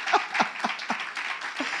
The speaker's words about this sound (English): Yes, it's okay for you to clap for him.